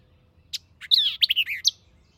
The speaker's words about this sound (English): swampy localities, where, eluding the observer, it pours forth its song with a sharpness and rapidity of articulation that are truly astonishing. This strain is very marked, and though inlaid with the notes of several other birds, is entirely unique.